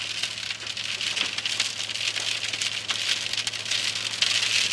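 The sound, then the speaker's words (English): Heavy monsoon rain in Arizona pours down in a dense, steady, unbroken roar, with a low constant hum underneath and no voices. “Typical Arizona storm.”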